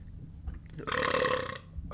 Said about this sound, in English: That was part of the film. Mm. That belch.